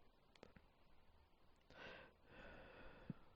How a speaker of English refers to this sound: Sorry. Just me breathing into the mic.